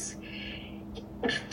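A breathy, hissing intake of air builds for about a second, then breaks into one short, sharp sneeze burst near the end, fairly soft overall with no talking.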